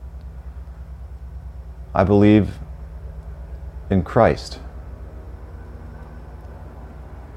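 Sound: helicopter flying overhead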